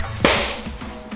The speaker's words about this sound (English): Shall we clap? Yes. 1, 2, 3.